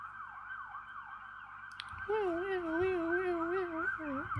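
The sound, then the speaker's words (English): An emergency siren wails steadily from outside, muffled, its rising and falling sweeps repeating throughout. Halfway through, a louder, wavering, howl-like tone joins in over it. “I might want to wait for that siren.”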